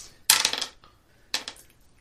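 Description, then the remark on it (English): Persuasion dice for a tabletop role-playing game clatter across a hard tabletop in two quick bursts of rattling clicks, the first longer and louder, with no voices. “Go ahead and roll that.”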